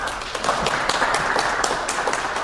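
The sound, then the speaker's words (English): A crowd of Talking Book patrons claps together, many hands producing a dense, crackling patter that holds steady at an even loudness throughout, with no voices over it. “So if you're a Talking Book patron, clap your hands.”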